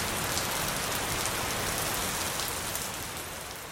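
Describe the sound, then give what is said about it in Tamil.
Steady rain pours down onto the ground, a dense, even hiss of countless drops that stays loud throughout, easing only slightly at the end. No voices. “விலைமதிப்பற்ற மழைநீர் பூமியில் துளிர்விட்டு ஆறுகளின் வழியாக விவசாய நிலங்களுக்கு சென்று பாய்கிறது.”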